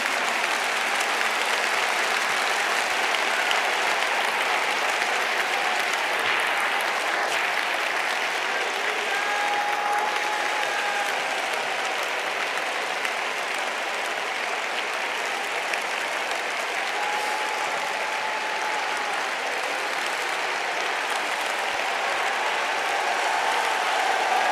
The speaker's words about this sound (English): Clap your hands again with all your might. With all your might.